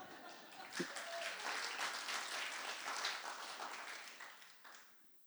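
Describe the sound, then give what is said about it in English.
An audience breaks into steady, dense applause for a nervous woman who will come up and play again, a continuous crackle of many hands clapping for about five seconds before tapering off at the end, with a few voices mixed in. “Won't you give her a hand?”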